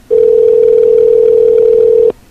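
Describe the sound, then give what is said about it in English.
A single steady burst of telephone ringback tone on a call to a 484 area-code number, loud and clear, lasting about two seconds before cutting off cleanly, with no talking over it. “Answer the phone.”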